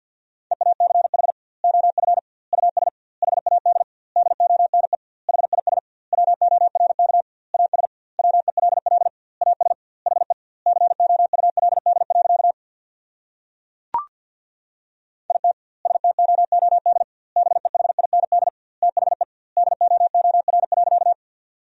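A steady single-pitch tone keys on and off in rapid Morse code at 50 words per minute, sending sentences from the top 500 words with doubled word spacing, a brief click and pause midway, then fast keying resumes.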